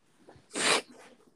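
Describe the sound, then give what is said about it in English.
A single sharp, hissy sniff through the nose, a brief burst of breathy noise standing out against quiet background sounds, with no one talking. “Sorry I keep sniffing.”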